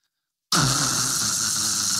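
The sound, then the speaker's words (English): A person imitates a snore, as of someone fast asleep: one long, raspy, breathy rumble that starts abruptly after a brief silence and holds steady for about a second and a half, fairly loud. “How many of you snore when you sleep, right? No, Peter is fast asleep.”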